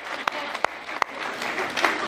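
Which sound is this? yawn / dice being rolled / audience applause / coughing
audience applause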